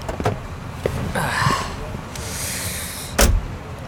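A passenger climbs into a car at the Sherman Oaks Galleria, with shuffling, clicks and rustling movement, then a car door shuts with a firm thud near the end.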